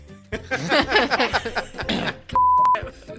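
Animated, laughing voices chatter, then a steady, loud electronic bleep cuts in for about half a second, masking the speech.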